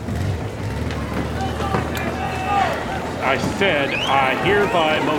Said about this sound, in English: Now, our listeners can't see this, but we've just heard all the members of Congress run out the doors to catch a glimpse of him on his motorcycle, leaving Representative Johnson all alone on the floor of the chamber.